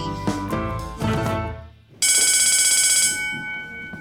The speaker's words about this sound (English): And that's the bell, so we'll continue our lesson after recess.